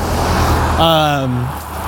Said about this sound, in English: I am your host, walking on a highway, windy, car passing me right now, deer walking in front of me. Welcome back. As you hear a car going by.